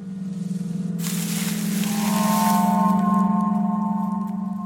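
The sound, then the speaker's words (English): A small spotted calf lets out a long, steady moo, a low droning tone held for several seconds, with a brief burst of rustling noise partway through as it moves through grass, and no talking. “It's a cow. Actually, it was a calf.”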